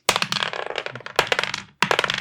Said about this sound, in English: Hey, let's roll again. Sure. We haven't rolled enough dice. Let's do a new order. Again.